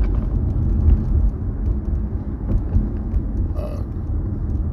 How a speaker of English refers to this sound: And this truck is stopping right here, is he?